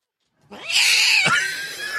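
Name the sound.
cat yowling sound effect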